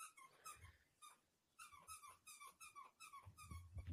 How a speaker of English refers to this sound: You guys hear that squeaking? Yeah, it's your dog, isn't it?